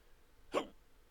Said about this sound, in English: But like my hiccups, they're kind of annoyingly in the way